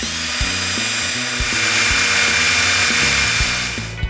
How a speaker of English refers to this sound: Okay, I decided to drill it right here.